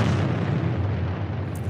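A nuclear bomb explosion: a huge, deep rumbling roar that stays loud and continuous throughout, heavy in the low end with a broad crackling wash on top. No voices are heard.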